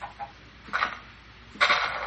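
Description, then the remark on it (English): Two short, clipped clucks from a video game chicken being lured with seeds, a moment apart, fairly quiet against a faint background hiss with no talking. “The chicken looks like it wants it.”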